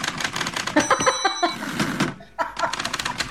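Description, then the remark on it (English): A typing sound effect: rapid, clattering keystrokes tapping in a busy, uneven rhythm, with a short pause near the end before the clicking resumes. “But your actual typing is louder and more comical than that.”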